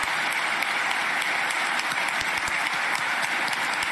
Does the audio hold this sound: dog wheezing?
no